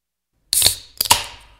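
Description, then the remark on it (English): A beverage can cracks open in two quick bursts: a sharp metallic snap with a hiss, then a second pop and fizzing rush that fades out. No one speaks. “Crack one.”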